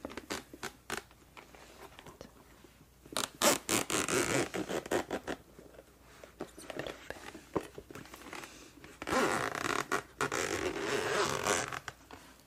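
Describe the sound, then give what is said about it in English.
A zipper on a flat, hard Geekria headphone case is pulled open in two long, rasping runs separated by a pause, with scattered clicks and ticks at the start and no one speaking. “It's got a zipper.”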